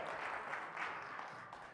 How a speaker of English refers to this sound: Can I tell y'all? 16 people from Peace Baptist showed up. Go ahead, clap yourself.